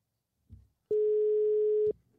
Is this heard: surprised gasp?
no